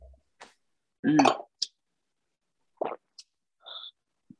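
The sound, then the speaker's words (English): A few brief, bright clinks of wine glasses in a toast, with a short ringing tone near the end, separated by soft shuffling and sipping noises and no talking. “That's why I need the wine. Cheers.”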